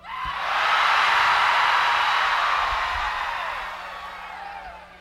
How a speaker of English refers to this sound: So when you see that, you'll know to scream like you're being swallowed by a whale. Is that clear? All right, we'll give it a trial run. One, two, three, Mr. Funk.